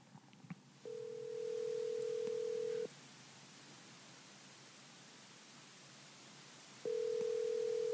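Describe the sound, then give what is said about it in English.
An outgoing phone call to a bass fishing tournament winner rings: a steady two-second ringback tone, a long pause, then the tone starting again, over a faint hiss of line noise, with no one talking. “So let's get him on the phone right now.”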